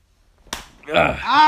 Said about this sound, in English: Why'd you moan like that? It took a lot out of me to slap you.